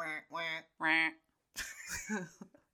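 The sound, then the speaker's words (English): Three short, nasal quacks in quick succession, loud, from a cartoonish duck in a duck-hunting video game, followed after a brief pause by a voice talking. “He went duck hunting at Lake Seminole. Here's me duck hunting.”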